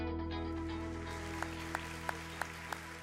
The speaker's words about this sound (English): Go ahead, keep on clapping, and I'm thankful for all of you that came today.